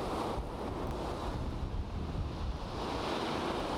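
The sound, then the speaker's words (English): Sea water with scum on its surface washes and laps steadily against a pier near a sewage outlet, a continuous wash of waves mixed with low, blustery wind rumble on the microphone, with no voices. “There seems to be a sort of a scum on the sea.”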